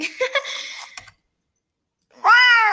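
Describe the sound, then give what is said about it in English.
A cat, Kiwi, gives a few short chirping sounds, then after a brief silence lets out one loud, long, drawn-out meow that rises and holds steady. “He may be cute, but cats are not easy to take care of.”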